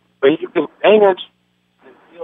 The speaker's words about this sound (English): All right, your phone, your connection is horrible. I don't know what's going on here.